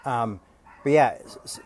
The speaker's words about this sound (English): Man, I hope those dogs keep barking.